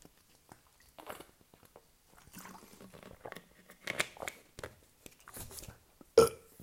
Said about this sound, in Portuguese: Arroto, que também já não fazia há vários episódios.